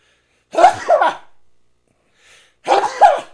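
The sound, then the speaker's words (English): Two loud sneezes about two seconds apart, each with a sharp double burst, with only quiet breathing between them and no talking. “I gotta sneeze.”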